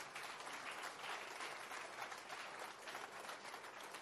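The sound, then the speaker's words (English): An audience claps steadily and loudly, a dense, continuous patter of many hands that holds an even level for about four seconds without any speech. “The clapping to is free.”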